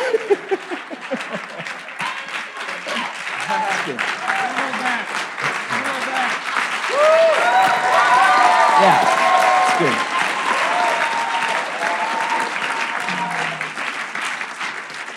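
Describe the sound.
A large crowd applauds steadily for about fifteen seconds for standing people who have fostered or adopted, the clapping dense and continuous, swelling midway, with scattered voices and cheers rising over it.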